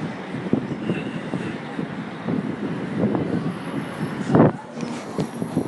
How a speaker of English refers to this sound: It's just lovely to see the red London buses driving past so frequently. Maybe they were always this frequent, but they look very frequent to me.